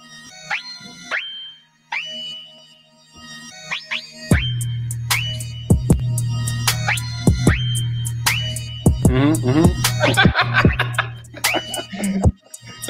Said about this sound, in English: Oh, shit. Drill type beat.